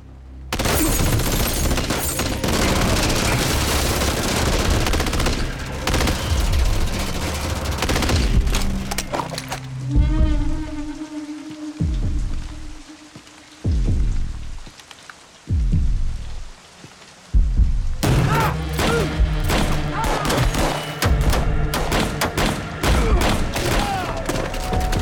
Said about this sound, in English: Let's count the gunshots that he shoots. One. Two. Three. Four, five, six, seven.